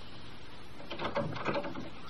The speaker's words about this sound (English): Please, open the door.